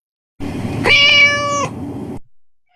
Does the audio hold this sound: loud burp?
no